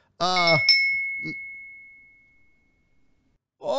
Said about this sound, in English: Yeah, keep sending those highlighted messages. Okay, you know what? I'll take out all the goddamn highlighted messages. You and these stupid fucking bells.